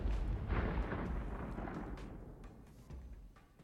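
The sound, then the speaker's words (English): A massive, far-off explosion: a deep, rumbling boom that swells quickly and then rolls away over a few seconds, its low roar slowly fading, with no voices. “And then there's a very large explosion a ways back from where you came.”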